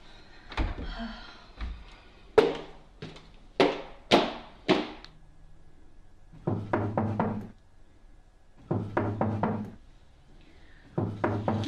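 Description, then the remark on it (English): Heavy knocking on a wooden door: a few sharp separate bangs first, then repeated bursts of rapid pounding in groups of four or five, with short pauses between. No one speaks. “Okay, I'm coming. You don't need to knock that hard.”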